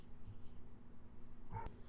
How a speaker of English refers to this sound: Damn, whose big ass dog is barking right now? My neighbor. Hold on.